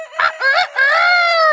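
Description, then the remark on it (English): A person loudly imitates a rooster's crow, a bright, strained cock-a-doodle-doo in a few rising bursts ending in a long sustained note, with no other sounds. “Please don't put a sound effect in over my stellar cock's crow.”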